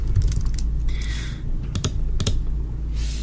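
Crisp typing on a computer keyboard: irregular bursts of clicky keystrokes over a steady low hum, with a short whirring tone partway through. No one speaks.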